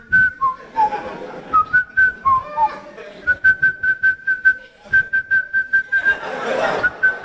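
Someone whistles a casual, wandering tune, sliding between notes at first, then repeating one steady pitch in a quick rhythmic run, with a burst of breathy noise near the end.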